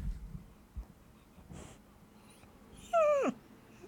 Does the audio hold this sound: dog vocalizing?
yes